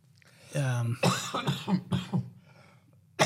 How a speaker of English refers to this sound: had a bit of a cough. Been hanging around for a few weeks.